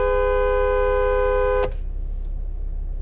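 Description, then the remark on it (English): A driver stopped at a red light in traffic honks at a speeding car that almost hits a kid on a bike: the car horn blares in one long, steady, loud honk of about a second and a half, then cuts off sharply, leaving a low rumbling background hum. “So I just honked like a psycho.”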